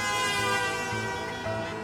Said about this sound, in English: Back in France, millions of fans have been watching, crowded around grainy television sets in town squares and at local bars. They all go crazy. They take to the streets in their cars, honking their horns.